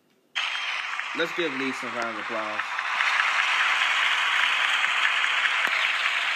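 A loud round of applause for a guest coach bursts in abruptly and continues steadily, dense clapping building slightly louder, with a few short whooping cheers near the start.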